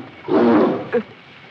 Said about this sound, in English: Oh no, there's some poor bobcat out there who needs help.